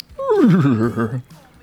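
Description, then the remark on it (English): A person imitates a horse's whinny with their voice, like a little horse: a single wavering, descending neigh lasting about a second, loud, followed by a brief faint breath. “Like a little horse.”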